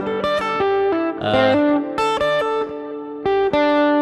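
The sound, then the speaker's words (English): A distorted electric guitar plays a quick legato phrase of connected notes, mid-pitched and fairly loud, with slightly uneven articulation and no one speaking. “I just kind of legato that the whole thing.”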